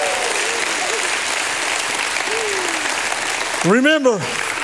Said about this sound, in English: If you believe it, give him a hand clap and a shout of praise.